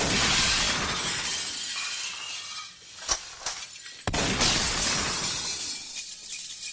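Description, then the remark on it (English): Storefront glass shatters loudly from gunshots, a dense spray of breaking shards with two sharp cracks partway through, followed by a continuing crash of falling debris. No voices. “Let me fire off a couple of rounds to distract them.”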